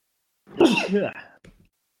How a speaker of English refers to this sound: Bless you. If that was a sneeze.